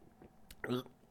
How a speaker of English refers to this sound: Dang. I've actually never had Panera coffee. You want to try some right now? On air? Yeah. Should I? Give us a review. You want me to waterfall it? No, that's fine. Okay, I'm going to sip.